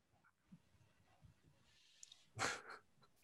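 A dog gives one short, sharp bark with a brief echo-like tail, heard faintly over an online call connection against a slightly noisy background. There is no talking.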